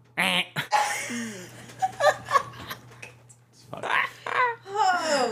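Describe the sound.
A person mimics a goose with a series of nasal, honking calls, broken up by bursts of laughter and giggling, over a faint steady hum.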